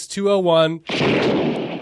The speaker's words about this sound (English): Oh my God! Peter Sagal, duck! Gunfire! Peter, get off your bike! Duck!